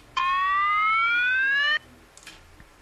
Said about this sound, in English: They all rush straight to the room when you got a fucking alarm going off on your toilet.